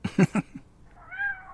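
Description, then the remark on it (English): A cat being fed gives a single drawn-out, rising and falling meow at moderate volume, just after a few short, low vocal bursts. “Did somebody say we were feeding cats?”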